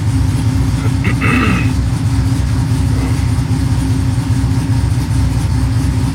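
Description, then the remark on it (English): A vehicle engine idles with a loud, steady low rumble and rapid throbbing pulse, its revs settling lower from about 900 RPM toward 600 RPM, with a brief faint whine early on and no voices. “She's at 900 now. She'll drop down to 600 RPMs.”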